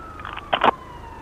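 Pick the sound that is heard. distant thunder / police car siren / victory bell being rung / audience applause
police car siren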